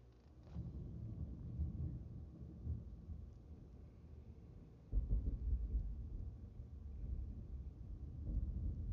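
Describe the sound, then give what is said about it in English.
Deep rolling thunder rumbles on and off, swelling into a heavier low boom around the middle and lingering as a steady growl, with a faint rain-like hiss beneath and no voices. “Y'all hear that thunder?”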